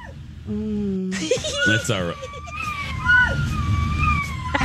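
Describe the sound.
A dog out at night on a fence howls along to a song in long, wavering notes that slide up and down in pitch, fairly loud, while a person briefly speaks near the start.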